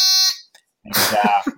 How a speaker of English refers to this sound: And if at any point it's neither of those things, we're going to buzz him out. And I've got my taboo buzzer here ready to go.